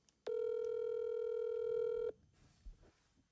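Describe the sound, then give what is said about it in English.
A single steady electronic ringing tone of a WhatsApp phone call sounds loudly for about two seconds, then stops, leaving faint background noise. “Yeah, no, I'll just call her on WhatsApp here.”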